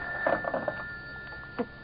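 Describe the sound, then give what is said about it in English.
A telephone bell rings in a quick cluster of rattling bursts, then gives one more short jangle, fairly close, over a faint steady hum with no voices. “Shall I get it for you? No, I'll get it. At least I'm safe on the phone.”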